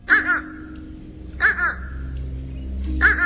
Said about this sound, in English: And it's those calls that are the most reliable way to separate the fish crow from the American crow. Here's the American crow. And here's the fish crow.